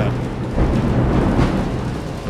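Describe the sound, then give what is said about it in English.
Thunder rolls through a hailstorm in the city, a deep, steady rumble that swells slightly midway and holds for a couple of seconds over a bed of hissing storm noise, with no voices. “I'm not even sure I want to sit out here with the thunder.”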